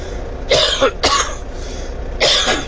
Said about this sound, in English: My cough's come back a little bit, but we're going to get through it.